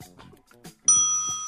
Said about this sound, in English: Bell.